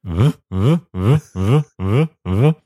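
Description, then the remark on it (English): A voice imitates the drawn-out whine an airplane makes after landing, while passengers take off their seatbelts and stand waiting to get off: six loud, evenly spaced groaning tones, each bending up and back down in pitch, with short gaps between and no other sound. “I've got a feature about the sound that the airplane makes sometimes when you land.”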